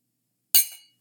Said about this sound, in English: If you're listening to the podcast right now, just like raise your glass and just give me a toast to the baby Jesus.